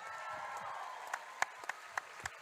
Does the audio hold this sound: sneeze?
no